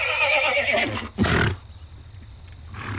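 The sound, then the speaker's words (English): An old horse that had got out of camp and was browsing its way back whinnies loudly, a shaky descending neigh followed by a sharp breathy snort, then quiet with faint bird chirps in the background. “It turned out just to be an old horse that had got out of camp and was browsing his way back.”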